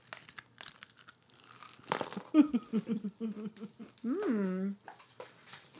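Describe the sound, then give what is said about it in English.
Crisp, crackly crunches from someone biting into panko-breaded fried chicken come in a quick irregular burst, followed by muffled chewing and a drawn-out, appreciative hum. “I think this one's going to crunch more.”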